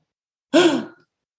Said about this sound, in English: Kachina let out a gasp